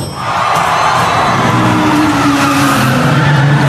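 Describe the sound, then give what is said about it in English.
A car drifts with a loud, sustained tire squeal over a roaring engine, the screeching and motor noise holding steady for several seconds with no talking. “That. Is the sound of drifting.”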